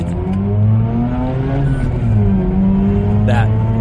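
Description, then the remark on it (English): A rotary-engine car revs up loud, its buzzing engine note climbing and dipping in pitch over a few seconds, with a brief sharper burst near the end. “Wait, I think it's rotary. That's the sound I got initially when I read that, when I listened.”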